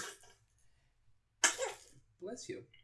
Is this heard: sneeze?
yes